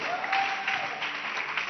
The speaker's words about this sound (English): Yes. Clap your hands once again.